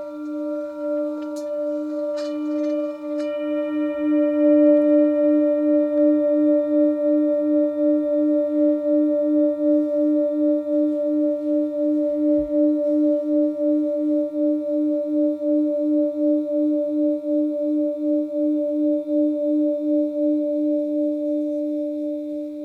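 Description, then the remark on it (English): A singing bowl is sung continuously, its sustained ringing tone pulsing with a steady, wavering beat. The rich hum holds fairly loud throughout, with no voices over it. “And that's sort of a gong experience. And then it can also be sung.”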